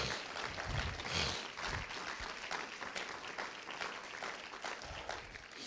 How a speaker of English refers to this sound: Would you give him another hand clap of praise?